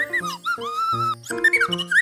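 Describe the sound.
A child's voice imitates bird chirping with a string of bright, warbling vocal chirps that slide up and down in pitch, coming in several quick bursts over about two seconds, during a Lingo Kids singing lesson.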